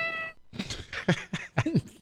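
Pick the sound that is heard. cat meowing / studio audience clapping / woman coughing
cat meowing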